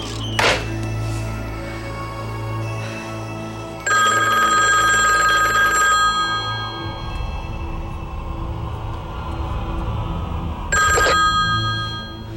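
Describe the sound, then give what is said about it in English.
A telephone rings in two bursts several seconds apart, a bright, steady ring over a low background hum, preceded by a soft thunk near the start. No one speaks. “And he does until the phone rings.”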